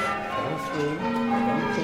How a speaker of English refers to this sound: started learning what's called change ringing, in which multiple bells are rung in specific sequences. I thought they just played tunes, but you're playing mathematical permutations.